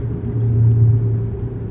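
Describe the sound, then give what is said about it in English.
A steady, loud low-pitched engine drone and road rumble from a car driving in bad traffic after missing an exit for Bucky's, continuous throughout the short stretch with no voices. “Yeah, traffic's bad.”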